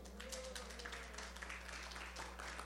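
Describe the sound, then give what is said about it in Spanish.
An audience in a course applauds steadily as a participant is called to the front, many hands clapping in a dense, crackling patter that holds at an even level for a few seconds over a faint low hum, with no one speaking. “Un aplauso.”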